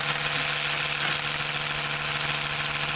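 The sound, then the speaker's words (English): A steady electric toothbrush buzz drones on without a break, a bright motorized whine with a low humming tone underneath and no voices. “It's false, it's an electric toothbrush, I'm afraid”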